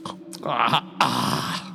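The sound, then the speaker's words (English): A voice imitates a character drinking from a cup during a role-playing game, with wet, slurping mouth noises, then swallows and gulps in two or three throaty bursts, with no words spoken. “And then makes noises like he's drinking and then swallows and gulps.”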